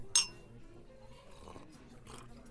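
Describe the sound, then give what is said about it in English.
A single bright clink of wine glasses touching in a toast for a six-month anniversary near the start, ringing briefly before fading into quiet background murmur and faint clatter. “Cheers, sweetie.”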